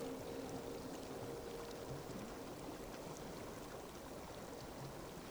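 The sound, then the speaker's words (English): A river below cliffs, running higher than usual for the time of year, rushes steadily with a constant, broad wash of flowing water that stays even throughout, with no voices. “The river is higher than usual for this time of year, so it's unlikely that the boat will get caught up on any of these rocks or other debris.”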